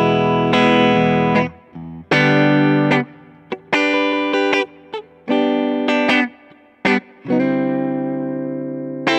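A clean electric guitar, played through a setup emulating a Fender blackface-type amp like a Deluxe cranked up a little, with the amp's spring reverb, plays a run of ringing chords and single notes alone, with brief pauses between phrases and a gentle splashy tail.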